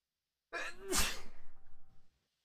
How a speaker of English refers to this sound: I need a sneeze.